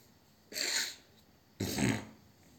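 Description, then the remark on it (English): Two short, forceful bursts about a second apart, like a sneeze and a cough from someone with a cold, loud against a quiet background, with no talking. “Sorry, due to some cold cough issues, that's why I'm doing something weird type sounds.”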